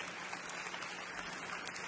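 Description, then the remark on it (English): An audience claps steadily, a dense, even wash of many hands with no pauses, at a moderate, unchanging level and no voices over it. “Why are they clapping?”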